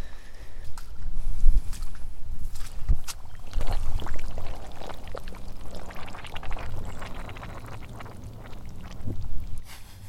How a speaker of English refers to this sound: The soil obviously has got water, but it's been aerated at the same time somehow, I guess. And as I tread on it, it's bubbling.